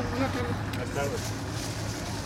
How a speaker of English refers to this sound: All right, we're loaded up in this boat. Yep. We're backing out of the port, heading out to sea. It's a fishing boat. It's about 20 feet long. It looks like it's been out at sea for more than once. Looks like a cheaty boat, to be honest.